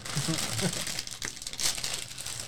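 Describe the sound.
A purple bag of Cheeto-style snack mix crinkles and rustles as it's pulled open, a steady crackly plastic sound with a few sharper crunches, while a voice murmurs faintly underneath.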